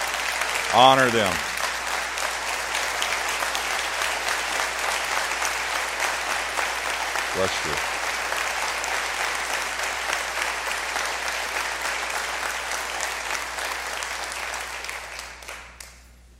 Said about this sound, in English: Would you give them a hand of appreciation for all they do? Yes.